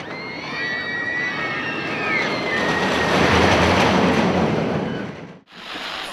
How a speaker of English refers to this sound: R is for roller coaster.